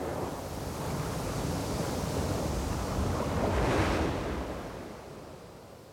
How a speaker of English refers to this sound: As La Bella leaves Guanabara Bay behind, the first few drops of rain begin to fall and the wind begins to howl.